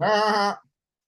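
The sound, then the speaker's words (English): A single loud goat bleat, wavering, lasting about half a second before cutting off into silence, made by a red desk phone as it rings. No voices accompany it. “I picked it up. It makes a goat noise.”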